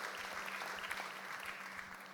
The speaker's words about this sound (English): I haven't got time. I'm watching my clock. I ain't got time for clapping. Though I do like it, but I haven't got time. So, yeah. If you want to clap and I'll let you go, or I'll just stop you depending on my clock, which you can't see.